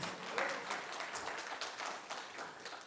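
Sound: audience round of applause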